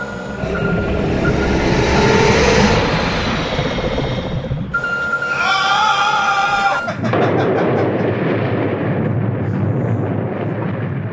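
A great white shark growls in the video game level 40 Fathoms, featuring Lara, as it rushes an enemy sub: a loud, rough, continuous roar with heavy low rumbling and crashing, metallic noise, shifting in tone midway, with no one speaking.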